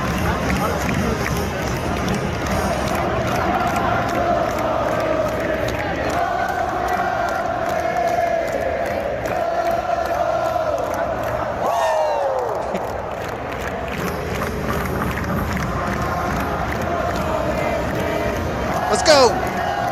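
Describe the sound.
A huge stadium crowd sings together in a loud, sustained roar of voices, with a steady melodic drone rising above the dense noise and occasional sharp whistles and shouts near the end.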